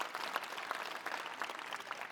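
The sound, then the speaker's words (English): An audience applauds steadily, many hands clapping in a dense, continuous patter with no voices standing out, holding an even level for the whole couple of seconds. “Let's give all everyone a round of applause.”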